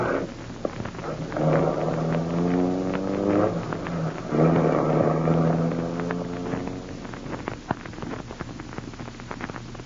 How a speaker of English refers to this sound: Harding's driving off in his car.